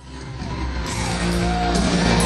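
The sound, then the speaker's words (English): A large concert crowd cheers and yells loudly and steadily as the band closes the night and waves goodbye, with whoops and shouts rising over a dense roar of applause that swells slightly toward the end. “They ended the night, they waved goodbye, and listen to this crowd as they close the night out.”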